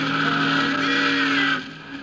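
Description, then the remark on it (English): A steamboat whistle gives one long, loud, steady blast with a rich harmonic tone, holding for about a second and a half before cutting off abruptly. “Doggone it, Bill, you blew that whistle on purpose, just so you couldn't hear my singing.”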